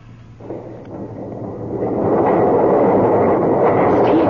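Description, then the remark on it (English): A deep mechanical rumble of heavy doors grinding open, starting low and swelling over a couple of seconds into a loud, steady roar that holds to the end, with no voices. “The doors are opening.”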